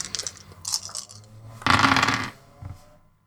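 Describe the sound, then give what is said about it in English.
Five dice clatter and tumble across a hard surface: quick light rattles at first, then a louder, denser burst of rolling, and a final small click as they settle. No talking. “Gnosis. Resolve. Again, 5 dice.”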